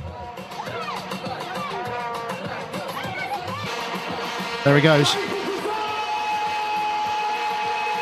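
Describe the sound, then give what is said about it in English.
A dense, buzzing drone of many vuvuzela horns blares steadily throughout, like a swarm of bees, with a crowd roaring underneath and a voice briefly speaking partway through. “for those of you who perhaps don't know what a Vuvuzela sounds like, here it is.”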